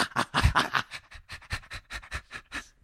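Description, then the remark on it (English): A person imitates a dog panting: a steady run of about a dozen quick, breathy huffs in and out, airy and hissing, with a few louder bursts early on and no words spoken. “So, okay, you make this sound now. The same sound? Yeah, like a panting dog.”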